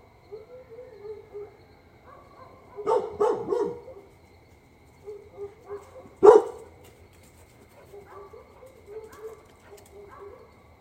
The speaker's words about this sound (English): Obviously, the dogs have found something out in the pasture.